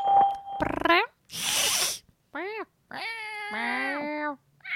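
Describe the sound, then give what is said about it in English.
A voice imitates a cat with several drawn-out, rising-and-falling meows, fairly loud, in a spoof of the Skype call testing service greeting. A short hiss of noise and a brief whistle-like tone come before them. “Meow. Afterwards, meow, your message will be played back to you.”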